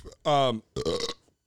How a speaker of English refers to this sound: excuse me. I've been trying not to burp this whole time because I burped a lot in the last one, but I'm like, yeah, fuck it.